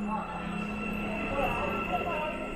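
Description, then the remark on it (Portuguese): Ambience at the entrance of a subway station: a steady, continuous rumble with a low droning hum and a faint high whine, plus indistinct background murmur, holding level throughout without distinct events. “Já na porta do metrô”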